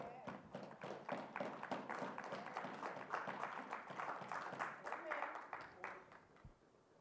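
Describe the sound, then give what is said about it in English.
A church audience claps their hands at the preacher's call during a sermon, a dense, steady patter of overlapping claps lasting several seconds, with indistinct voices mixed underneath, before the applause thins out at the end. “Come on, clap your hands right there.”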